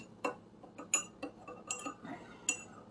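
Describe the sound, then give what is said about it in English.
A spoon clinks repeatedly against a cup while stirring tea, a series of bright metallic taps in an uneven rhythm, fairly quiet, with no talking. “But this, and here comes the clink, clink, clink to stir my tea.”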